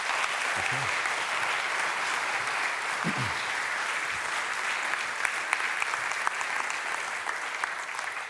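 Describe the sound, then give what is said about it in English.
An audience at Vineyard church applauds steadily for several seconds, a dense wash of many hands clapping at an even, sustained level, with a few faint low murmurs beneath. “Give her a big clap.”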